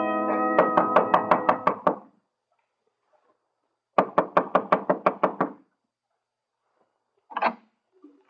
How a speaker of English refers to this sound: Only certain kinds of people knock like that. You ain't fat enough to be a bill collector. This makes you what? Police. Bingo, I know it.